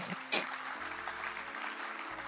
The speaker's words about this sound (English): Clap for the Lord Jesus.